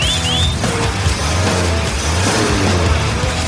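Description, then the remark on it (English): A vintage American car built in Detroit in 1959 or earlier revs in Cuba with a deep, throaty rumble, loud, holding steady throughout with slight surges. A couple of brief high chirps sound at the very start. “Today, that's the roar of Detroit's finest, circa 1959 and before, of course.”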